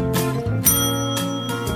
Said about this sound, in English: Ring the bell.